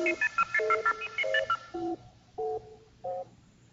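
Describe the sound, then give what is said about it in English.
A rapid run of electronic beeping tones gives way to the three NBC radio network chimes on Monitor, the NBC Weekend Radio Service: sustained, evenly spaced chime notes, each bright and clear, with no one talking. “Stepping on the NBC chimes, I'm sorry about that.”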